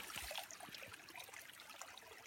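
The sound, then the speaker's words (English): Water trickles steadily through a filter into a container, about 3 liters being filtered, a soft continuous splashing and hiss with no pauses, fairly quiet, with no voices. “So, 3 liters of filtered water.”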